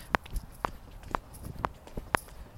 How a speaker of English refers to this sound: I hope you could hear my feet clicking and not just the wind. It's pretty windy here lately.